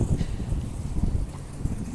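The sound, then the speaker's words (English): Steady low rumbling buffets of wind hitting a microphone outdoors at Costco as the speaker gets out of a car, loud, with gusty pulses throughout and no clear speech. “I'm getting out of the car right now, so I'm hoping this is not too windy.”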